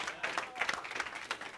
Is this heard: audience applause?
yes